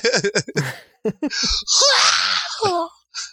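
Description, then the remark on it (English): A person imitates the Wilhelm scream: a few short, choppy vocal bursts lead into a loud, strained, wavering high-pitched cry lasting over a second, followed by a brief breathy sound. “Whoa, that was a really good Wilhelm scream”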